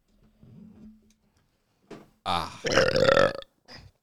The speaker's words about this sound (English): Ah. Good old cord scraping burps. You're just making it as long as possible, ain't you?